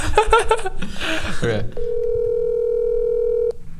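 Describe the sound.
A brief burst of voice gives way to a single steady electronic ringing tone on a phone line as a call goes unanswered, lasting close to two seconds, clear and fairly loud, then cutting off.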